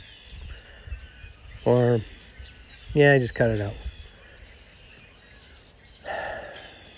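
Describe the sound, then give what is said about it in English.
Faint birds chirp steadily outdoors, while a person makes a few short voiced sounds, like hums or breaths, without speaking. “I was just listening to the birds.”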